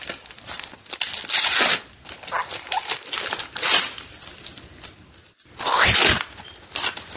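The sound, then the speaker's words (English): Old-school patterned gift wrapping paper being torn open, a series of loud crinkling rips and rustles in irregular bursts, with a brief pause before a final vigorous tear. “I like this wrapping paper. That's cute. That's old school. It's old school Rudolph the Red-Nosed Reindeer. I like that. Cool. I almost hate to open it, but I'm gonna”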